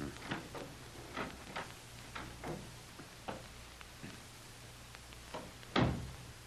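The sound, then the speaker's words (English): A cellar door leading to the cellar steps being opened, with a run of uneven wooden clicks and knocks over several seconds, then a louder thump near the end, with a low steady hum underneath and no voices. “Here's the door that leads to the cellar steps.”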